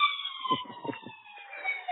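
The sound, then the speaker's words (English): An emergency vehicle siren sounds from outside, a steady high tone whose pitch slowly sinks as it passes by, with low traffic rumble underneath and no talking. “Oh, there's the Daily Siren. It wouldn't be a podcast without it.”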